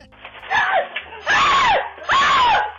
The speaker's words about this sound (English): He went outside to grab a package and he saw a little mouse. And he starts screaming like a six-year-old girl.